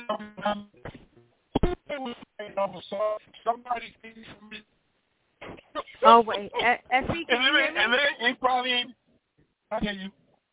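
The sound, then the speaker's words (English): Muffled, narrow-band voice over a phone line keeps breaking up, with the speech chopping into fragments and dropping out into short silences before resuming. “Yeah, your phone was going out.”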